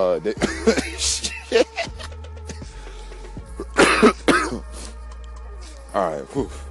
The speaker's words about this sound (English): fuck, I'm still coughing. This is crazy.